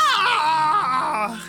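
A loud, high-pitched scream, sustained for a second and a half, wavering in pitch before trailing off slightly at the end, with no talking.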